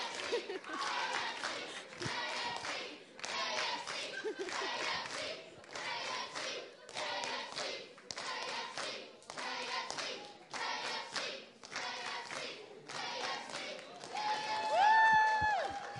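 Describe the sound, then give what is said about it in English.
At a KFC, a crowd shouts in rhythmic unison while clapping along, a loud chant repeating in steady bursts roughly once a second, with a brief whistle-like tone near the end. “Why are they shouting at KFC?”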